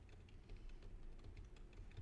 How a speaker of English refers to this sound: Sorry, I was typing for a second.